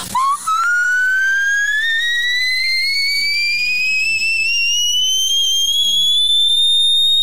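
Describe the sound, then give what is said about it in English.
A single piercing whistle-register note, a G10, sung very high, held loud and unbroken for about seven seconds while it glides steadily upward in pitch, sounding thin and kettle-like with no talking. “Here's an example of the G10.”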